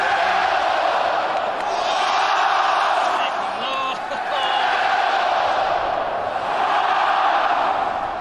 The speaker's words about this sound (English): You've got the Battle Dome Battle Hawks chant.